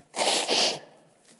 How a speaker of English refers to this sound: I apologize for that. It was a little... and that the internet's going to hear me blow my nose.